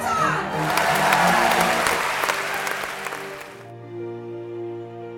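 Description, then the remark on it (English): A crowd erupts in loud cheering and applause with sharp claps for about three seconds, then the noise cuts off and sustained musical tones take over. “She roars, can I hear you roar one more time?”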